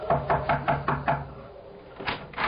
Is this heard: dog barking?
no